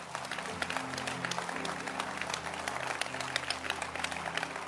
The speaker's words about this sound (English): So this morning, let's clap our hands again for our sister.